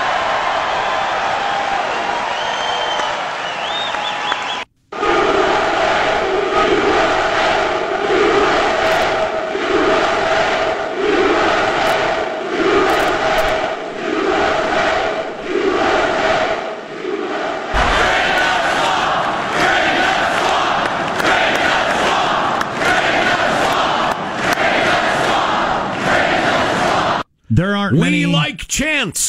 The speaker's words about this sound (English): We like chants.